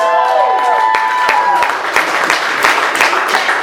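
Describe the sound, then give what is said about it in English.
A crowd cheers and claps for people just freed from sin, opening with a high whooping voice that slides downward, then a steady wash of cheering with scattered sharp hand claps throughout. “That was weak. Come on. Let's cheer for people.”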